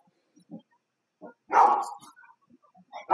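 A dog barks loudly in one strong burst near the middle, with softer short yips and huffs before it and another bark starting at the end. No one speaks.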